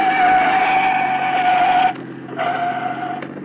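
A police car's engine roars loudly and steadily at high revs as it speeds along, the sound dipping briefly near the end before surging back up.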